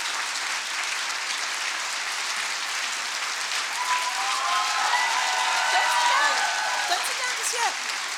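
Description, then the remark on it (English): A large audience in a room claps steadily and densely throughout after a speech, with a few whoops and cheers rising over the applause midway through as it swells slightly louder. “I just came up to get some of the clapping from her.”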